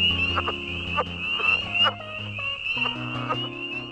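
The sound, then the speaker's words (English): Low, throaty frog mating-call croaks repeat in uneven pulses, groaning and chuckling over a steady high insect-like chorus, clear with no voices. “It looks quite similar to the northern and southern leopard frogs, but one of the things that distinguishes it from these other species is its unique mating call, which has been compared to groaning, coughing, or chuckling, and for good reason.”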